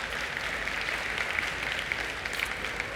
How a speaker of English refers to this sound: Happy Father's Day to all our dads out there. This morning, you can clap for our dads. We love our dads.